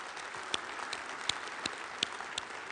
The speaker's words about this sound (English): That was an appropriate amount of clapping, not too loud, but loud enough, you know what I'm saying?